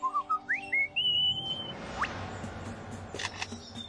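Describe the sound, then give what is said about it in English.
A male superb lyrebird mimics a camera shutter and the camera's motor drive. A few rising, sliding whistles give way to sharp mechanical clicks and brief clattering bursts, clear, with no talking. “That was a camera shutter.”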